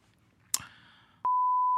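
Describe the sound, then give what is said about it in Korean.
On the Korean comedy show Kim Yong-min TV Cocomedy, a sharp burst of noise gives way to a steady, pure high-pitched censor bleep that starts abruptly and holds at constant loudness to the end, loud and alone. “왜 삐 처리를 해?”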